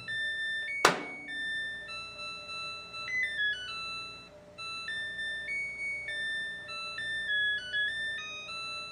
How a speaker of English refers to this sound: she's like, oh, this washing machine plays this cute little song when it's done.